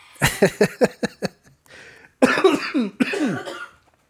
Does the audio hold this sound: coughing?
yes